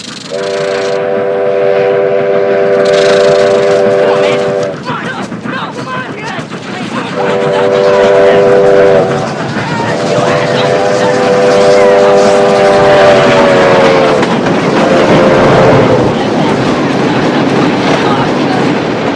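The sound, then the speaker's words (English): An approaching train rumbles along the tracks with a steady, loud clatter while its horn sounds four times: three long, chord-like blasts and a shorter final one. “Get the hell off the tracks, Teddy.”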